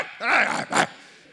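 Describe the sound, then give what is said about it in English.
A person imitates a dog barking, the way they bark back at dogs that bark at them: two loud bark-like bursts, a longer growling woof followed by a short, sharp yap, with no other talking. “When they're barking at me, do you know what I do? I bark back.”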